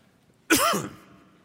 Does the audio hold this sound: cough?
yes